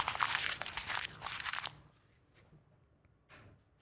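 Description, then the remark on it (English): Papers being ripped in half by hand, picked up by a microphone: a loud, crackly tearing burst for about a second and a half, then a couple of faint, brief rustles of paper afterward. “You're going to rip them in half instead? That was a terrible rip.”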